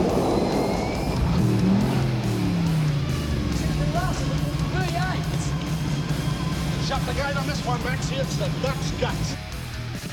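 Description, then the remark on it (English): A 351 V8 race car engine roars steadily throughout, with a deep, rumbling drone and rising harmonic whines as it revs, loud, with faint voices or crowd noise in the background. “Just listen to 351 work.”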